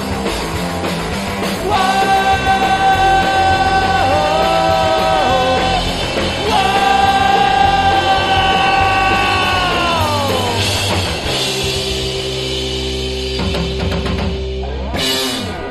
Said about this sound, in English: Hell yeah. No one's heard that song yet. No. Pigs Radio, Pigs Exclusive.